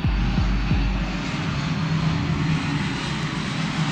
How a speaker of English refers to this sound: Oh, there's a plane that's just going to fly by.